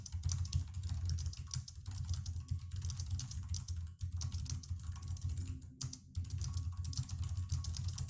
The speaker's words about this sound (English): Okay, that was me typing a lot.